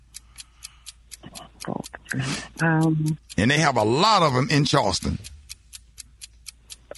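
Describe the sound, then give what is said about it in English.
A steady, rapid, crisp ticking of a game timer clock during a trivia quiz runs through the whole clip, continuing under a short stretch of people talking in the middle. “That'll save you a whole lot of time instead of letting that clock tick away trying to think.”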